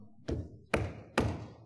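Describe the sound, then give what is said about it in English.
Three dull, heavy hammer blows land at a steady, unhurried pace, each a sharp thud with a short low ring fading before the next strike. No voices are present. “Hark, I hear the dull blow of the hammer swung low.”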